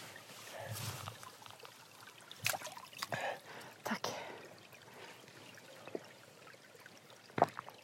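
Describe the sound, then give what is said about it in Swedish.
Clear water in a small stream trickles and splashes steadily outdoors, with a few louder bursts as it is poured, while a voice speaks briefly. “Ja, klart vatten. Klart vatten.”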